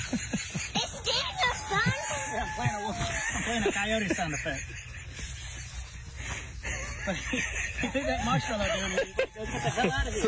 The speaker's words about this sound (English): Playing a coyote sound effect.